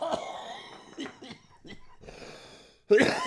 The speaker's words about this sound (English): I knew it would make me cough.